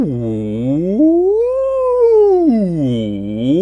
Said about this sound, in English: and I sound like Dory communicating with the whale, don't I? Oh boy, those are called sirens, and they're just to get the vocal cords stretched at the top and bottom ends.